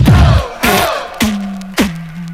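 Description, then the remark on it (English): A crowd yells "ho" in loud, evenly spaced bursts in answer to a rap call to yell ho, four shouts in quick rhythmic succession, with a low steady tone humming between the later calls. “Somebody yell ho. Say ho, ho.”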